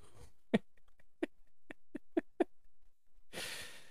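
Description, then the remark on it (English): Wet, smacking licks from a dog licking a chihuahua, about seven quick clicks in an uneven rhythm, fairly quiet, ending in a short breathy rush of air. No one speaks. “Your dog's licking your chihuahua?”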